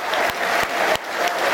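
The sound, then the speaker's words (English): A large stadium crowd at The Den, Millwall's ground, applauds in tribute to former Millwall player Phil Walker, a dense, steady roar of clapping that holds at an even, loud level throughout, with no voices standing out. “Nice image of him on the big screen, and the den rising as one to applaud a Lions pioneer and a Lions hero, 1954 to 2022, Phil Walker.”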